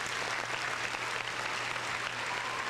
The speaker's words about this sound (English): Round of applause for you. Just round of applause.